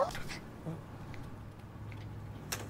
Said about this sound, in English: Is that a dog in your bag? Nope. We actually allow small pets with a cleaning deposit. Good, because I have a small dog in my vehicle.